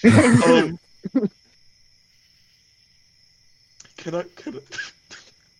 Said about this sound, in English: Wait. Cough at the same time.